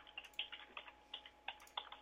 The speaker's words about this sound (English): I like how our listeners can now hear us all typing furiously.